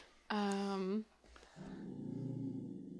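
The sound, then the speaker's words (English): A dog lets out a loud, drawn-out deep bark, then settles into a low, rumbling, bear-like growl that continues steadily with no other sounds. “He sounds like a bear when he barks.”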